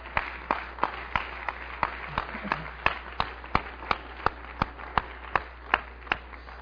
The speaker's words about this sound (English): Oh, give me my hand clap.